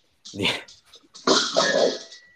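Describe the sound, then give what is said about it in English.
A dog barks in two rough bursts, a short one followed by a longer, drawn-out yowl after a brief pause. “Dog.”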